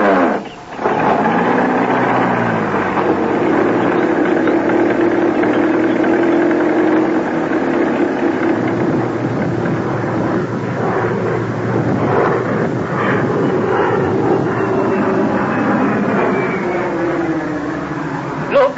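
An old car engine drives along, loud, a steady rumbling drone whose pitch rises and shifts as it runs for the whole stretch with no one talking.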